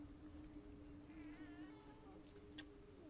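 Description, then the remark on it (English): A male cat lets out a single drawn-out, wavering meow, moderately quiet, over a steady low hum, followed by a couple of brief sharp clicks. “that's a real BK cry. He has weird cries.”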